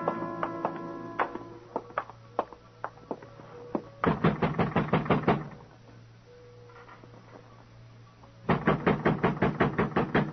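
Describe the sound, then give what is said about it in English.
Rapid, forceful knocking on a door in two long bursts of quick repeated raps, separated by a pause, after a few scattered lighter taps and clicks. Loud, with no voices. “The door, Muggerman.”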